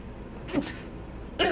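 A single sneeze: a short voiced catch followed by a sharp, hissing burst, then a brief quiet stretch before another loud breathy burst at the very end.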